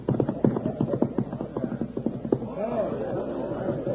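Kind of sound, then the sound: animal, horse hooves clip-clopping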